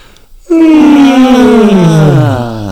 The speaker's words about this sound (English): Can we do that thing that we do together when we all yawn at the same time?